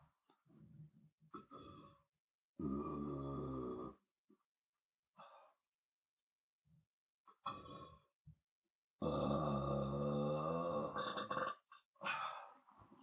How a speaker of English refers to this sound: But hold on, I gotta burp first. I can't just drink water with a burp in my throat.